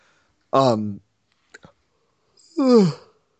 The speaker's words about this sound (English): Sorry, occasional yawning